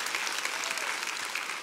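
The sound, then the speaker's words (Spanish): Steady applause from a church audience in honour of Jesus Christ, a dense continuous patter of many hands clapping at an even level throughout, with no voices standing out. “Y sí, yo creo que se merece un fuerte aplauso a Él toda la honra y a Él toda la gloria.”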